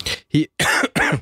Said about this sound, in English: … is coughing like he has pneumonia